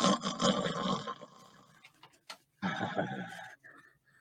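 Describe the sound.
A voice mimics loud snoring: a long, harsh, rasping snore, a brief snort, then another rough snore after a short pause.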